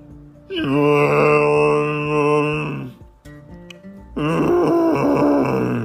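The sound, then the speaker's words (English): Two long, loud dinosaur groan sound effects with no talking, each a deep, rumbling, harmonic roar lasting a couple of seconds, separated by a short, quiet gap. “They looked over a hill, and just on the other side was a dinosaur, like a real live dinosaur.”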